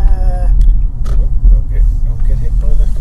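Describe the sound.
A large transit bus rumbles past, its deep engine drone steady and loud, with a brief high whine at the start and faint voices mixed in.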